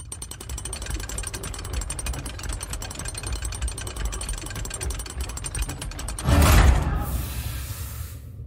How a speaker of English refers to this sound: There should be a winding shaft somewhere on that control panel that manually opens those chambers. Try and find it and crank it.